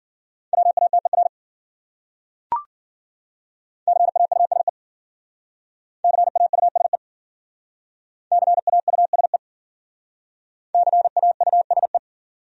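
Fast Morse code at 40 words per minute, sending common words in a steady mid-high tone, rattled off in five quick bursts of dots and dashes separated by short silences, with one sharp click early on.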